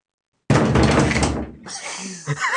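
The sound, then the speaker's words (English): Loud knocking on a door, a quick cluster of heavy thuds lasting about a second, followed by a brief quieter stretch and murmured voices. “you should go knock on the door.”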